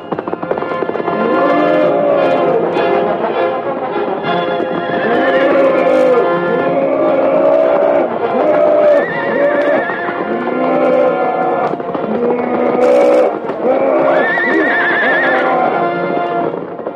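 A horse screams and whinnies again and again in shrill, wavering cries while hooves stamp and clatter beneath, loud and continuous throughout with no talking.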